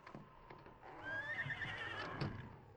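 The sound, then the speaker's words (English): A horse in a barn lets out a single drawn-out, quavering whinny lasting about a second, fairly loud, with faint shuffling and soft knocks before and after it. “Ranger beckoned to Tonto to follow him into the barn. We'll look at the horses.”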